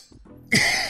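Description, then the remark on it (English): One sharp cough bursts out loudly after a brief quiet moment, harsh and breathy, with no talking around it. “As I cough real quick.”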